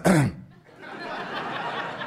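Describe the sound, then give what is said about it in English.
A single loud, throaty cough-like burst and throat clearing from a man demonstrating coughing, followed by a sustained wash of audience laughter. “Men cry by clearing their throats. Men cry by coughing because this makes them uncomfortable.”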